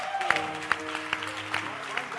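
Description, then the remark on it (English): An audience claps their hands, a dense patter of applause with sharper beats landing roughly every half second, mixed with a steady hum of tones and voices underneath. “So you can clap your hands for her.”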